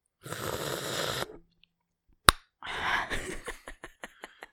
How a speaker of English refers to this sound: And sipping water, apparently.